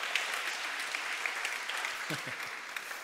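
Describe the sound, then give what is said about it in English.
An audience claps steadily to thank the AV team, camera operators and sound people, a dense, even crackle of many hands that holds at a constant level throughout, with a brief vocal murmur rising through it near the end. “A huge shout out to our AV team, camera operators, sound people. Give it up.”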